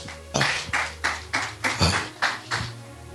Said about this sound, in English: Oh, are you blessed today? Clap your hands, church.